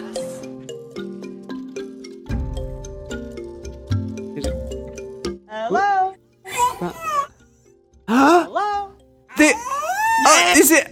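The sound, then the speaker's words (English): Plinking keyboard notes give way to a killer whale that a woman trained to mimic human words such as "one, two, three" and "hello": four or five squeaky, warbling, voice-like bursts that swoop up and down in pitch, loud and strained. “The killer whale thing, where there was like a story saying like a woman had trained a killer whale to like say 1, 2, 3 and hello and stuff.”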